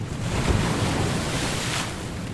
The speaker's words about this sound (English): We're starting this episode in 1839 with a ship crashing through the waves of Bass Strait en route for Melbourne from Tasmania.